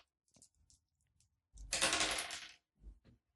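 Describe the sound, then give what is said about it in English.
Dice clatter across a hard tabletop in a loud, rattling burst of about a second, preceded by a few light clicks and followed by one last soft knock, as damage is rolled in a game. “Okay, so go and roll the damage and then we can...”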